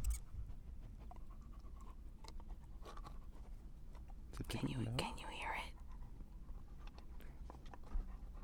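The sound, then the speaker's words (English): A dog with a chew toy pants right up against the microphone in quick, breathy huffs, with rustling handling noise midway and a person briefly speaking softly. “Put the mic next to Neo's mouth and get him eating”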